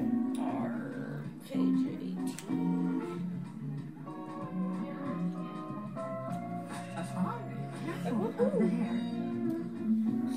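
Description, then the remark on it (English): A voice imitates a cat, producing a run of drawn-out, wavering meows, fairly loud and continuing with little pause for about ten seconds. “I told my mom you sound like a cat.”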